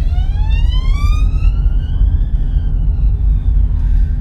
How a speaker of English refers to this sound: Oh, ambulance car going past.